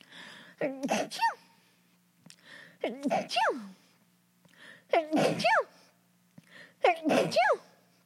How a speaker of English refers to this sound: Okay, just so you guys know, I sneeze 6 times. No, I sneeze 8 times a day, every day. So that was like 4 or 5 times.